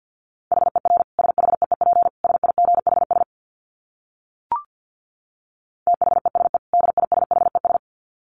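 Fast Morse code at about 50 words per minute: a single steady mid-pitched tone keyed in rapid dits and dahs, in two bursts separated by a pause with a short click.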